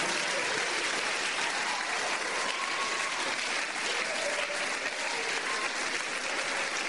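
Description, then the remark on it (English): Sustained applause from a church audience clapping for Jesus, a dense, steady wash of many hands clapping at once for several seconds, with faint cheering tones rising briefly through it. “Put your hands together for Jesus. Uma salva de palmas para Jesus.”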